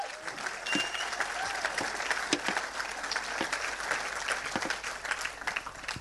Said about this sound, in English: Team small groups. Teamwork. Come on, let's give her a huge round of applause.